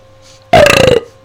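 A single loud burp lasting about half a second, with a rough, croaking rattle and a slightly falling pitch, surrounded by quiet background noise.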